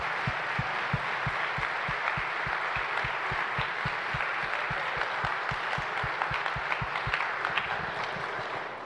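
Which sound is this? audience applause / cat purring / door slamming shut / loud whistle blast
audience applause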